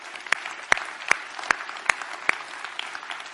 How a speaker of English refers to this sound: And I think we should give them a big hand because they're awesome.